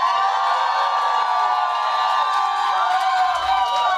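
A crowd of Thomas Mulcair supporters cheers and shouts loudly and steadily for several seconds when asked to make some noise, a dense wash of many high voices with whoops rising over it, no single voice standing out.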